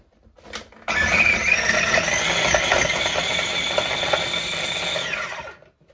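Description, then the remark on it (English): A kitchen appliance, not a blender, is pulsed to chop orange pieces: it whirs loudly for about five seconds, a steady motor roar with chopping rattle from the orange pieces inside, starting abruptly after a brief click and winding down at the end. “Okay, let's give it a pulse and see what happens.”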